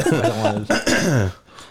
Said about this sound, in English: Like, man! I feel like I got a cough coming on.